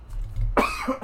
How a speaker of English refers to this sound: Sorry. Trying to cough away from the microphone. Excuse me.